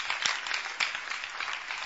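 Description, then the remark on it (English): Steady audience clapping, a dense patter of many hands with a few sharper claps standing out, sustained at an even level throughout, as the group claps for a woman before she comes in. “Let's clap for her before she comes.”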